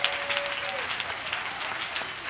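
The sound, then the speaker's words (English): An audience at a Father's Day church service applauds the fathers as they stand, claps steady and without pauses, a dense wash of many hands, moderately loud throughout, with faint crowd murmurs and a brief whistle-like tone beneath. “And ladies, can y'all just give them a hand till they turn red?”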